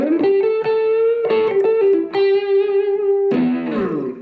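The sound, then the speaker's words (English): A distorted electric guitar, a limited-edition Kramer Pacer in a modern, around-2020 version, plays a short riff of sustained, buzzing notes with bright harmonics, loud, ringing out in a room with a touch of reverb and no voices. “But there's just enough reverb in this room to really appreciate that guitar sound.”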